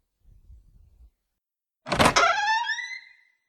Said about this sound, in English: Oh, cool. It's one of them voice-activated doors from the future. That's bonkers.